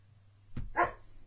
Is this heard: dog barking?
yes